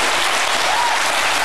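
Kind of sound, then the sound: crowd, big audience applause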